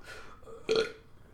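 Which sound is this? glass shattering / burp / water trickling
burp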